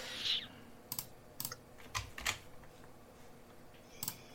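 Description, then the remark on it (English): Irregular clicks of typing on a computer keyboard, a handful of separate key presses spaced unevenly across a few seconds, fairly quiet, with no talking. “Is this helping me typing all these?”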